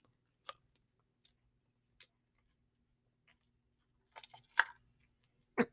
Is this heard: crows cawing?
no